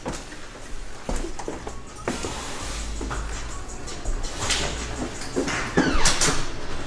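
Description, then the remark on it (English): A door is pulled shut, with a few sharp knocks and rattles, scraping and shuffling movement, and a steady hum underneath. “Like, you close that door if you want to.”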